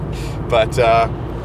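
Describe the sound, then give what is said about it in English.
Steady low rumble of a car driving on a city road in Calgary with clear traffic, heard from inside the cabin, continuous throughout, with a voice speaking briefly over the engine and road noise. “So this has been really an interesting drive, I must say. It's been pretty clear with the traffic.”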